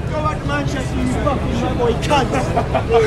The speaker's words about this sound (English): Jumping on the bus here now, fella.